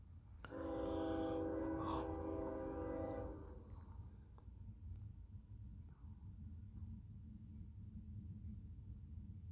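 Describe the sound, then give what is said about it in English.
A loud, sustained Union Pacific train horn blares for about three seconds over a heavy low rumble, then cuts off while the deep rolling rumble of the train crossing at amplified volume continues steadily to the end. “That's the fake sound of a train as though it's approaching. And then a train crosses path at an amplified volume.”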